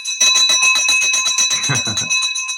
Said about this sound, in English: you should have heard this victory bell like 3 months ago, maybe a few months ago, because you've had multiple deals under contract that fell through